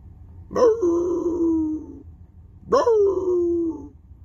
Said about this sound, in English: This old man used to sit on the porch with his hound, and every morning as he passed that old man's house, the hound used to howl.